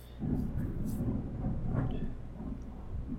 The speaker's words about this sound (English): Thunder.